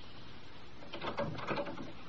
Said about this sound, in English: Why'd you close the door?